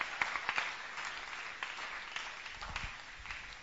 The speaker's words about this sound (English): Your clapping is very weak.